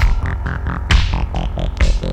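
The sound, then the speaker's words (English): A loud disco music sample played by DJs, with heavy, throbbing bass and a steady pulsing beat, bright chords stabbing in a repeating rhythm, with no voices. “DJs have just given you another sweet sample. That's a good sample. Listen to that bass.”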